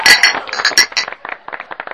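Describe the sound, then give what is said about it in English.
Glasses of Line and Kugel's light summer beer clink together in a toast, a loud, bright clash of several glasses at first, followed by a string of lighter, ringing taps that fade out. No one speaks. “So cheers and other stuff. Cheers.”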